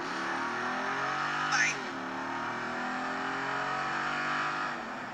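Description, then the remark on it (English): A powerful, high-horsepower car engine from the vehicle the hosts drove that day roars continuously with layered harmonics, its pitch climbing and dipping through a sharp rev around the middle, staying loud and steady throughout with no one speaking. “That's some serious horsepower.”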